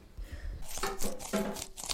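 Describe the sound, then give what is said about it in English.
Spoons scrape and chisel into raw turnip, giving a run of crisp, crunchy, gritty bursts in an uneven rhythm, fairly loud, with no one talking. “The crunching you're hearing, although it sounds like we're eating Monster Munch, is actually the noise of our spoons chiselling out the turnips.”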